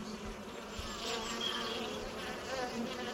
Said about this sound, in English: That bee buzzing sounds really musical already. Let's remember that sound for later on.